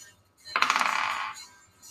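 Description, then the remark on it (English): A small die clatters across a hard tabletop in a quick rattling burst of rapid clicks, lasting under a second before settling, fairly loud with no voices; it is rolled for a sleight of hand check in a tabletop game. “Go ahead and do another sleight of hand check.”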